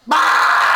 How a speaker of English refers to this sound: And I'm screaming a lot.